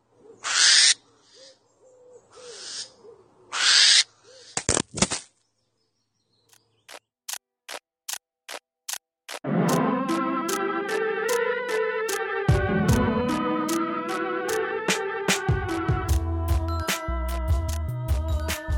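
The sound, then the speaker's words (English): Three long, harsh hissing screeches from two angry barn owls burst out loud, followed by scattered clicks and knocks as the owls batter and destroy a hidden camera that was spying on them, before music starts. “For now, here's what it sounds like when two barn owls discover a hidden camera that is spying on them, get very angry about it, and destroy the camera.”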